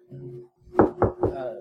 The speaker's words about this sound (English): Yeah, you wake up in the morning, probably on a couch or something. Yeah. Knock on Etsu's door.